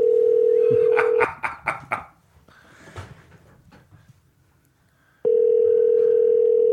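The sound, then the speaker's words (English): A telephone dial tone hums steadily, then a quick run of about five keypad beeps is punched in to call a business phone, followed by a quiet pause with faint handling noise before a loud steady tone returns. “It's a business phone. He's got to pick it up.”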